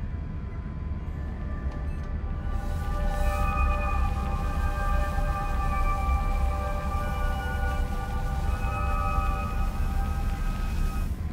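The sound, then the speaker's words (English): Eerie, sustained chime-like tones coming from the instrument panels of a station with malfunctioning equipment drift over a steady low hum, several pitched notes layering and sliding slowly like a faint, ghostly melody. No voices are present. “I keep hearing these series of chimes, almost like music coming from the instrument panels.”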